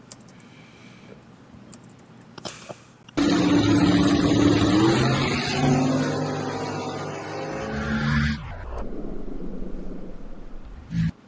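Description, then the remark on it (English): Two drag race cars launch in a close race with a sudden, deafening roar at about three seconds, engines screaming loudly for several seconds before the sound cuts off abruptly, leaving a quieter background rumble. “I'll play the video you guys of you and Tommy so everybody can see how you're getting out.”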